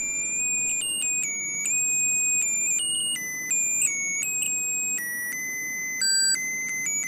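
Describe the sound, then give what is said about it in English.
A broken musical Christmas card beeps out carols in thin, shrill electronic tones, working through a medley including We Wish You a Merry Christmas and Jingle Bells, the melody jumping erratically between notes in a steady stepwise pattern over faint background hiss, with no talking. “It's almost like it's got ADD and it can't decide which Christmas carol to stick on.”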